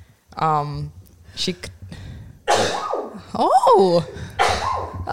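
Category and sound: human body sound, sneeze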